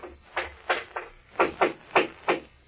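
Sharp hammer blows ring out alone from an outer office, three in quick succession, a brief pause, then four more in a steady, knocking rhythm, each strike crisp and fairly loud.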